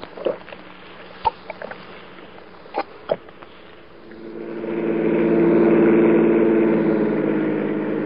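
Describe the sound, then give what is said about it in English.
A few scattered clicks and knocks, then a car engine swells up and holds a steady, loud droning hum, like a vehicle pulling away and driving along in traffic. “We got fouled up in traffic.”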